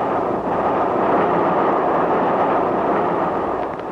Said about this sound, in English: The train's starting to sway already.